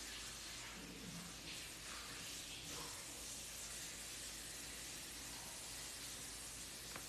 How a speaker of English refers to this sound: Continue breathing in and out of your heart while I ask my mom to shut down the water so that you guys can not hear that in the back.